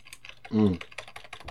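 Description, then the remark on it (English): Quick, irregular clicking of keys on a computer keyboard, fairly quiet, with a short voiced murmur breaking in briefly partway through. “Doodling, which I fully know will mean that I have to edit out some typing.”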